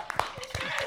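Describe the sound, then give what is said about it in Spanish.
A brief musical jingle for a radio segment opens with crisp, rhythmic handclap-like hits over a steady sustained tone, loud, lasting under a second. “Vamos a ver si tenemos la cortina que a ella tanto le gusta.”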